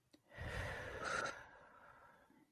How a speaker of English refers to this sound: Again, a deep breath in through the nose.